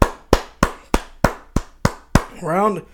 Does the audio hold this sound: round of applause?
yes